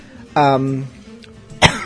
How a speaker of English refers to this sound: yeah, still coughing.